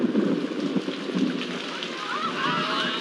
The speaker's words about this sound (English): And then it happened. It started to pour.